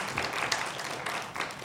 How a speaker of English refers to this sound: And give yourselves a round of applause for being the best. Yes.